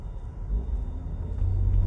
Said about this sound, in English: I'm waiting for the traffic to go.